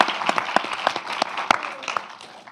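A round of applause from an audience: many hands clapping in a dense, steady patter with a few sharper individual claps standing out, fading slightly toward the end.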